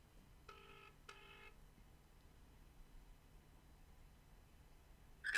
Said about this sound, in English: All right. Dialing.